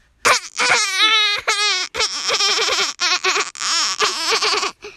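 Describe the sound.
A boy imitates a dolphin with a run of high, wavering squeals and chattering chirps, loud and bursting in quick, uneven spurts for about five seconds.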